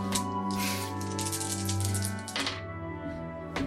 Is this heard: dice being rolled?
yes